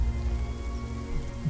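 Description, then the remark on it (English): Steady rain from a storm falls continuously, a dense low patter on a hard surface with a faint hiss above, moderately loud, with no voices present. “I mean, it has been storming because Lucina did do lightning cloud.”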